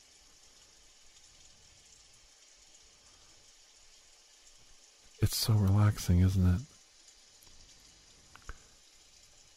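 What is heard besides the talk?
steady rain falling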